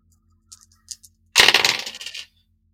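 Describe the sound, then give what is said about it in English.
A few light clicks, then dice clatter across a hard table in a loud, rattling tumble lasting under a second before settling, with no one talking. The dice are rolled for a check in a role-playing game, as a player tries to trace a chat window's IP address. The roll is an 8. “Yeah, go ahead and make me a sharp roll.”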